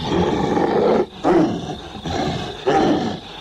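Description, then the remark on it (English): A deep, drawn-out growling bark from Dickless, a dog back in zombie form, like a dog's bark slowed down and amplified, repeating in three or four loud, rough pulses with brief gaps between them, no voices. “To me, it seriously sounds like a dog's bark's been like slowed down and kind of amplified some way, shape, or form.”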